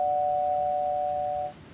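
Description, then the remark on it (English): A doorbell rings with a steady electronic tone held for about one and a half seconds, then cuts off; fairly clear and alone, with no voices. “That's the pizza bell, so we got to wrap it up.”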